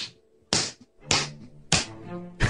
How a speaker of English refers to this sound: Hard slap too.